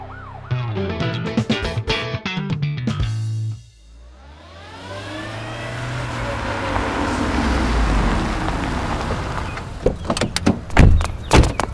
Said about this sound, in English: Without bothering to explain further, Inspector Chimp rushed back to the car. Rollie followed quickly behind him. As soon as they were both in the car, they sped away, sirens blaring.